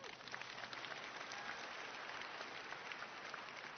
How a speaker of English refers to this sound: Clap if this ever happens to you.